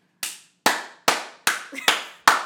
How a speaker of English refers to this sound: You just made half our audience deaf with that clapping.